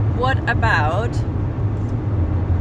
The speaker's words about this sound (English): God, it is windy today. Sorry, people on the podcast. Jesus Christ. Very windy. Hey, very windy today. Shit. You can hear on the thing, my God.